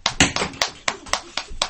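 Hands clap in a steady, even rhythm, about seven sharp claps over a couple of seconds, moderately loud with no voices, a round of applause for a cast member of a Noah and the ark play.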